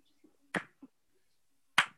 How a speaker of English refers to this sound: Is that the slow golf clap? Yes, it is.